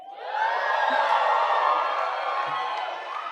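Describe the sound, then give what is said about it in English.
A large audience screams and cheers together in a loud, sustained roar of overlapping voices that swells quickly and holds steady from start to finish. “Oh, you can scream.”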